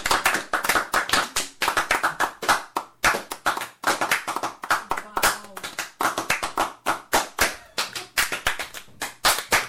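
Several people clap together in a dense, uneven burst of sharp slaps that carries on steadily for about ten seconds, fairly loud, with a couple of brief lulls.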